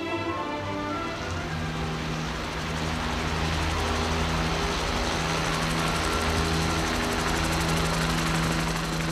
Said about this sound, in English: Several hours later, our revelry was interrupted by a low-flying tour helicopter